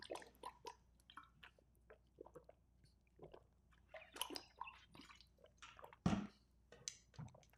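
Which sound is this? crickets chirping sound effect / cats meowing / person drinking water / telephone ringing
person drinking water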